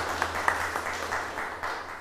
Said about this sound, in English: Let us give a round of applause